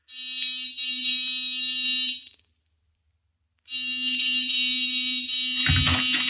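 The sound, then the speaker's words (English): A door buzzer is pressed twice by police in the middle of the night, producing two long, loud, harsh buzzes about two seconds each, separated by a brief silence, with a small knock or click near the end of the second. “Give the buzzer a punch.”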